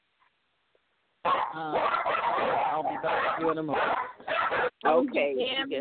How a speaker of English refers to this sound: Okay. Those are her dogs.